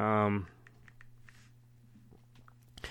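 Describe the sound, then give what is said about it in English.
A brief burst of voice, then scattered soft keystrokes tapping on a computer keyboard at an uneven pace over a low steady hum, fairly quiet. “Why is my fat fingers typing the word W? Trying to type it in the word Q.”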